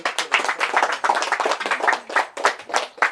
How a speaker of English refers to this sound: Why don't we just give a little clap for the Lord. Amen.